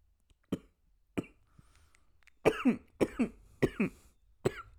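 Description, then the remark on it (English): A person coughs after swallowing water: two short, sharp coughs, then a quick run of four or five loud, harsh, rasping coughs. No one speaks. “Sorry, I swallowed water too.”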